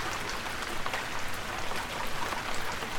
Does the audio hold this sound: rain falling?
yes